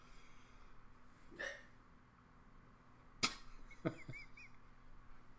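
hiccup

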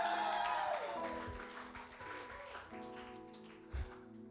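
audience clapping hands

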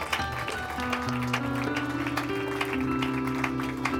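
audience applause

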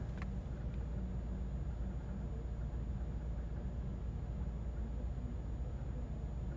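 car making a noise

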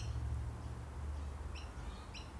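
birds chirping outside

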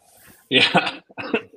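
coughing

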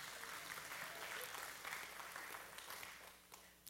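audience applause

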